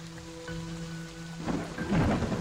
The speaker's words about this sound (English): There's some thunder off in the distance.